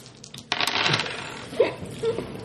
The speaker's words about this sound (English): So you're the only one who hears a much louder metal clanging coming closer by, followed by a thud, like something metal falling to the ground.